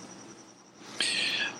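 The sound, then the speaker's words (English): A cricket chirps in a thin, high-pitched trill that runs steadily, then swells into a louder, shrill burst for about half a second before easing off. No one speaks. “Not as problematic as the fucking cricket, though.”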